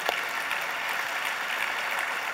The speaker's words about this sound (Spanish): Dele un aplauso al Señor esta mañana.